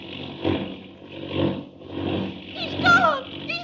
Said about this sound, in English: The plane took a sudden, sickening plunge, and Clark Kent vanished.